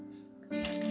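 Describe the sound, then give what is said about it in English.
Wine pours from a bottle into a glass, a bright, steady splashing hiss that starts abruptly halfway through and continues over a low, constant background hum. “You hear that? Yeah, that's the wine. You hear how much I pour?”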